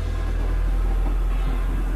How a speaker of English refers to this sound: That was a song, not outside. I'd be so freaked out if I heard thunder in the sky look like this.